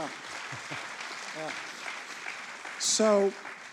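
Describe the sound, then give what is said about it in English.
A church audience applauds in a steady, dense wash of clapping that holds throughout, with a brief voiced cheer rising over it near the end. “So why don't, yeah, you can clap for that.”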